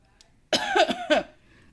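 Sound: coughing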